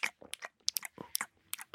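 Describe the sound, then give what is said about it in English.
A voice mimics sloppy, noisy kissing and chewing: a quick run of wet smacks, clicks and slurping bursts in an irregular rhythm, fairly loud, with no words spoken. “It wasn't a camel chewing in the background. What was that? …'s just eating face behind me.”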